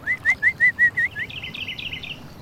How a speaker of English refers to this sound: I love watching the birds and listening to what they have to say. They have a lot of opinions, you know, but people don't often care to hear them out.